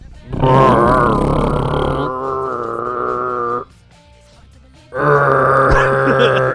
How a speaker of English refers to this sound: After internal combustion engine, cutting the grass. And here's what you hear.